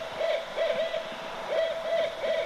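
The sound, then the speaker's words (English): Owls up in the rafters hoot a rhythmic who-cooks-for-you call, a series of clear, mid-pitched notes grouped in short phrases, heard alone over a soft background hiss. “My friends up there in the rafters, it does sound a bit like Who Cooks For You?”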